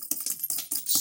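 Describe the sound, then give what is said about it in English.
Coins clink and rattle together in a quick series of bright metallic jingles, fairly quiet, with no voices over them, as someone fetches a coin to flip from a pile of coins. “I was going to mention when you were getting a coin”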